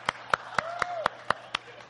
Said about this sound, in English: Who's applauding?